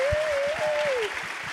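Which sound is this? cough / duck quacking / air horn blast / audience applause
audience applause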